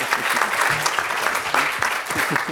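An audience claps in a steady, dense round of applause that stays loud and even throughout, with a few faint voices and cheers mixed into the clatter.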